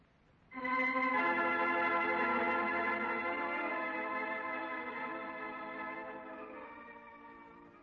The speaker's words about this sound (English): You're hearing that alarm clock sitting there on the counter that was behind the package.